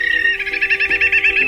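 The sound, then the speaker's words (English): A rapid, continuous series of high, buzzy chattering calls from dovekies, the smallest auk of the North Atlantic, pulsing steadily and fairly loud for the whole moment with no voices. “It's the smallest member of the auk family in the North Atlantic. Ale, ale, the dovekie.”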